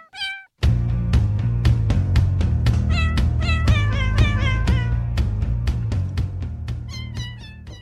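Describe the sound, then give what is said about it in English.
A cat meows several times in quick succession, the loud, high cries layered over a steady rhythmic beat and a low humming drone, with no one talking. “It's been a big week for our cats. Let's get into some cat boys.”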